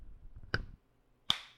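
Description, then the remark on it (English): Two sharp, crisp hand claps about three-quarters of a second apart, made so a recording's audio can be lined up, the second brighter and ringing slightly, over a faint low rumble with no voices. “You should clap real quick.”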